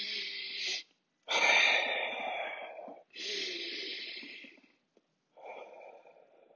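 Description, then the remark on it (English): Slow, deep breaths drawn in and let out during a breathing exercise, three long airy breaths with short pauses of silence between them, audible and unhurried with no talking. “Take a slower breath.”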